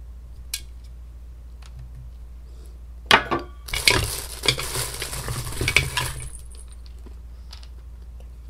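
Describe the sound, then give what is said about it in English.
A wooden Montessori baby rattle from a rattle set clacks a few times, then is shaken hard for about three seconds in a busy, clattering burst of dry knocks before falling quiet. No one speaks. “So this little Montessori rattle set, you'll get a lot of bang for your buck out of this set.”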